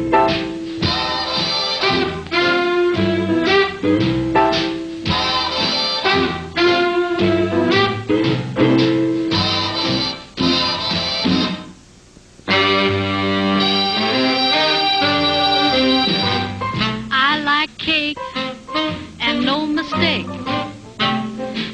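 A big band swing number with a woman singing over full horns and a steady rhythm section, loud and lively throughout, with a brief near-silent break partway through.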